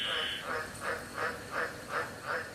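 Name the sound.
frogs croaking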